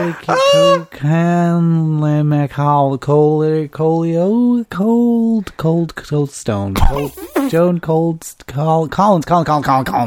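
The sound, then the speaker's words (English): A person loudly imitates a goose, letting out a rapid string of nasal, honking calls, one after another with brief gaps, with no other sounds around them. “Why did you become a goose? Honk.”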